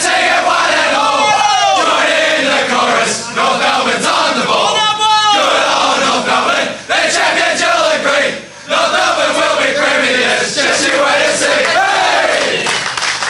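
A large crowd sings a club song chorus together, loud and continuous, with many voices rising and falling in unison and a couple of brief dips in volume partway through.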